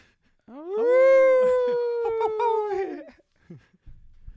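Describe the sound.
A person imitates a wolf howl with one long, sustained, slightly wavering call that swoops up then slowly falls over about two and a half seconds, loud, followed by a few faint noises.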